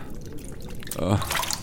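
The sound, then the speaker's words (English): Water splashes and drips in a wash basin in a small, simple room as someone splashes water on their face, a short burst of sloshing and trickling, with a faint voice murmuring underneath. “Splash some water on your fucking face.”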